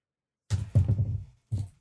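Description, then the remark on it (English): A cat named Cosmo jumps up onto a desk and knocks a bunch of objects off it; they clatter and thud in a quick burst of jumbled impacts, followed a moment later by one more bump, with no voices. “He just jumped up and knocked a bunch of stuff that was on my desk.”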